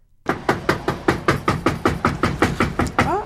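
A long run of rapid, evenly spaced knocks on a door, about a dozen firm raps in quick succession, close and loud with no voices.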